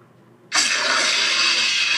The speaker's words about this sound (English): His roar is as such. Hold on, make sure my laptop volume's loud enough.